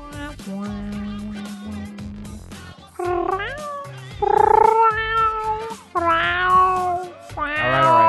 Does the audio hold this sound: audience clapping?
no